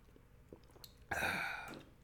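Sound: sipping coffee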